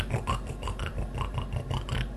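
A pig snoring: a quick, steady run of rough, raspy snorts, roughly four per second, low and grating at a moderate, even volume with no voices.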